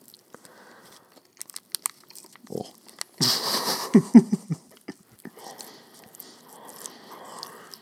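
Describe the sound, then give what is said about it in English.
Chewing of a turkey meat bar, with a dense burst of wet biting and tearing midway, then scattered mouth clicks and softer mastication. A voice briefly murmurs. “Eating meat bars on air.”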